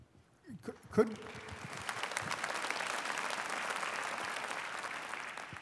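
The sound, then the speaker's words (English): An audience breaks into applause after a brief burst of voices, the clapping rising quickly and then holding as a steady, dense patter of many hands for several seconds. “I don't want to step on your applause. No, it was weak, so it's indicating that it wasn't very happy for everyone.”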